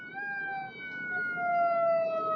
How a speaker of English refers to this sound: More ambulances.